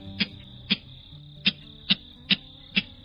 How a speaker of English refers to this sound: The clapper rail. It didn't stick around there long, but it's appearing today as our featured feathered friend. The clapper rail is a large, slender, chicken-like rail with a long, slightly down-curved bill and a short tail.